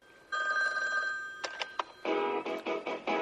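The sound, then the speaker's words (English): A telephone rings: a sustained steady electronic tone for about a second, then short chirps, followed by several loud pulsing rings with a buzzy, harmonic-rich quality. No voices. “I'll just ring him up and DC Chapman.”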